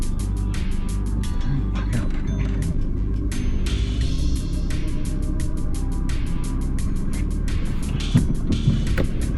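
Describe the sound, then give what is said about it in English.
A car's air blower fan runs with a steady whooshing rush over a low engine rumble, continuous throughout with faint intermittent ticking. “Put a bit of air blower on because it's quite warm in this car.”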